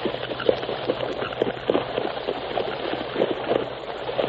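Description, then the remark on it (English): Horses wading across a ford of the Rio Grande into Mexico, with steady rushing water and a loose rhythm of splashing hoofbeats churning through the shallows, continuous, with no voices. “There, river. The Rio Grande. Keep traveling across the ford.”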